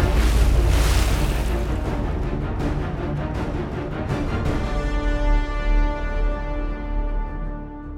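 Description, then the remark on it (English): A loud, rushing splash of Falo falling into a body of water right behind his walking stick bursts in at once and churns for several seconds, then thins into a ringing, shimmering tone that slowly fades. “Splashing right into his reflection, Falo disappeared.”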